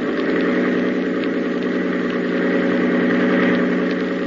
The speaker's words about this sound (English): tell Grady to hold tight to the wheel and open the engine up full